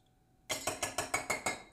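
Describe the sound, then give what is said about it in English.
A smoking bowl is knocked out into a glass ashtray in a quick run of seven evenly spaced, bright clinking knocks. Each tap rings briefly and sharply, with no talking over them. “All right, let me knock this fucking bowl out.”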